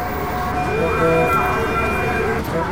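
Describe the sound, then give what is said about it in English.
An emergency siren wails steadily through dense, rumbling traffic in the big city of Karachi, its tone rising and holding over the constant din, with faint indistinct voices mixed into the busy street noise. “Sirens and cars honking were constant hum in the background at all hours of the day and night.”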